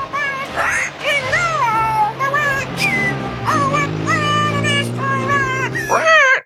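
A screechy, parrot-like voice, a person imitating a parrot, warbles a tune resembling Jingle Bells in high, gliding, nasal notes. It stays loud throughout, over a low steady drone.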